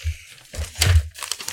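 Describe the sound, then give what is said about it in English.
A paper page being flipped: a brisk, crinkly rustle with a sharp swish in the middle, then a softer trailing crackle of paper settling. No voices are heard. “Just gonna dramatically flip the page.”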